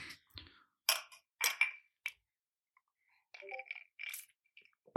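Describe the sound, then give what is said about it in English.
Several glasses clink together in a toast: a scattered series of bright taps and chimes, some ringing briefly with a high glassy tone, spread over a few seconds without any talking. “Cheers. Cheers. We're going to cheers.”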